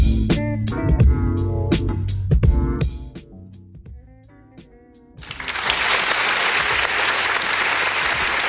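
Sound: applause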